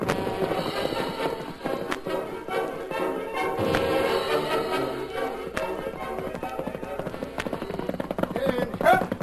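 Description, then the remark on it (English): Horses' hooves clip-clop in a steady rhythm of sharp taps as the horses are led by the reins, layered over a busy background of music and faint voices. “I'll lead your horses by the reins.”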